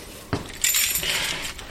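Close metallic jingling and clinking of keys, with a sharp click at the start and another at the end, like a lock being worked on a heavy metal door. No one speaks.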